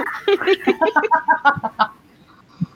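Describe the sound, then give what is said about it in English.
A person imitates a clucking bird with a quick, steady string of about a dozen loud, chicken-like syllables, then falls quiet except for one faint short sound near the end. “I really want to play into the bird stereotype.”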